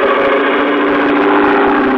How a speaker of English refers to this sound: Two high seats were built up on it. At the back was a powerful motor with a propeller of the airplane type.